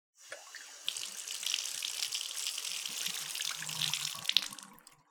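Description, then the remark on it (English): Cold tap water runs steadily into a sink for several seconds, a broad hissing splash that starts abruptly, stays fairly constant, and tapers off as the faucet shuts. No one speaks. “cold water, please.”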